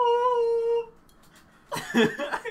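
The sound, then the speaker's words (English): A voice sings a single sustained F sharp, held steady and fairly loud for under a second. A short pause follows, then people start talking and laughing. “I'm gonna give it hot an F sharp.”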